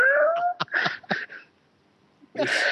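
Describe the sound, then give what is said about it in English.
A voice imitates a repetitive wailing, screeching guitar loop from a film score: a rising whine, a series of sharp choppy bursts, a brief pause, then one more harsh, high screech. Loud. “What we do end up with as the score is this kind of repetitive guitar loop, and it sounds like somebody is standing on the tail of one of your cats,”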